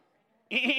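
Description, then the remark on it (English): A person imitates a sheep with one loud, wavering "baa" that starts abruptly after a quiet moment and holds steady. “Can you make a sheep noise?”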